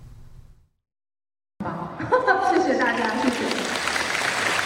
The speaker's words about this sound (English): Children sit in the school hall, enraptured, and clap as they listen to the dancer in front of them.